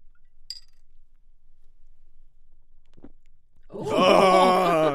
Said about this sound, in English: Give us an ASMR gulp. Here, let me.